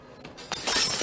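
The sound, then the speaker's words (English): A glass beer bottle drops and shatters: a couple of brief sharp knocks, then a loud, bright crash of breaking glass that sprays and tinkles for a moment. No voices. “Drops the beer, which is a beer foul!”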